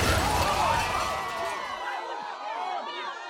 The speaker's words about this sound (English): But the group of people standing outside of the coffee shop weren't so lucky. The car never slowed as it plowed into them, dragging them screaming into the shop itself.